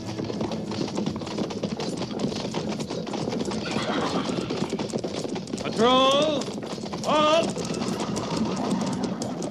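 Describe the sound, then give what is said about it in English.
Many hooves of a cavalry patrol's horses at Fort Laramie clip-clop in a dense, steady patter throughout as the patrol is dismissed and dismounts, with two loud, wavering whinnies breaking out near the end and a murmur of voices underneath. “Dismiss the patrol.”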